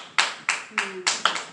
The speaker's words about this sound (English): You clap on, sister.